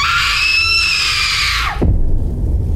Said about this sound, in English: He sees her. This girl in a white dress standing in the middle of the road, screaming her lungs out.